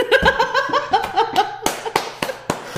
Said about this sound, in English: Okay, anyway. Sorry, I clapped so loud.